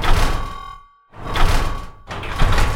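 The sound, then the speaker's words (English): Large steel bolts slam shut in front of doors and heavy steel shutters drop down in front of all the windows, set off by buttons on a wrist watch, in loud grinding, clattering bursts with a brief silent pause between the rumbling movements. No one speaks. “And you see large steel bolts shutting in front of the doors and large steel shutters dropping down in front of all of the windows.”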